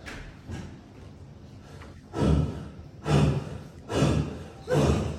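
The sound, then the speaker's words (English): Someone demonstrates a breathing technique, breathing in a forceful, exaggerated rhythm: a few softer breaths, then four loud, sharp, rushing breaths in a steady pattern about a second apart, with no talking. “All right, so the breathing goes like this.”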